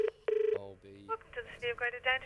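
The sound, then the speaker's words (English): A telephone ringback tone on an outgoing call to the local council, a steady buzzing ring heard twice in quick succession, then a person starts talking as the line is answered. “We're trying to find out who lives at a particular property, so I'll be ringing up the local council.”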